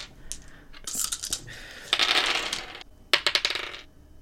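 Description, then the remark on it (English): Several dice, a red, a purple and two black, rattle and clatter across a hard tabletop for a sword attack roll in a tabletop game, in a few quick bursts, a sustained tumbling roll in the middle and a final sharp skitter, with no talking. “Difficulty is still a red, a purple, and 2 black dice.”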